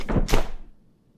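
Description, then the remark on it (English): A punch lands with a heavy thud, knocking a man out cold, followed a beat later by a second dull impact, like a body hitting the ground, then quiet. “Did you just punch someone for me? He almost caught us! You knocked him out cold.”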